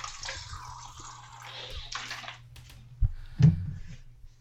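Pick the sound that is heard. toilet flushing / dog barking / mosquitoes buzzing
toilet flushing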